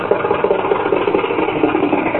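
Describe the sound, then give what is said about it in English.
A car engine idles with a low, even rumble and a faint rhythmic chug as the car is being parked, holding constant throughout with no voices over it. “Here, Rochester, and park the car.”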